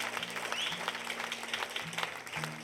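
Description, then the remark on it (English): An audience at Bridge Church applauds Pastor Jay with dense, steady clapping throughout, while low sustained keyboard chords hum underneath and shift a few times. No one speaks. “Can we give another round of applause for Pastor Jay?”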